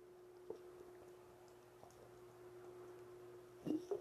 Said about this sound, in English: Pardon me while I take a drink.